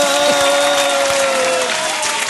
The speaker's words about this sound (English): Good burn. Good burn. Jeff found the applause button.